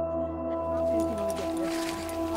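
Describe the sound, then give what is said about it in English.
A canoe is slipped into lake water at the south end of the lake with a soft, brief swish and gentle splashing, set against a steady low humming background tone. “I slip the canoe in the water at the south end of the lake.”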